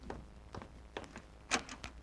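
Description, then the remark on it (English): A run of sharp knocks on Mr. Benny's door, about seven raps in uneven clusters, with one louder, firmer knock near the end. No one speaks. “You answer the door this time, Rochester.”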